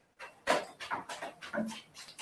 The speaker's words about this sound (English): Sorry, the dogs are walking down the stairs as you could hear them hustling and bustling.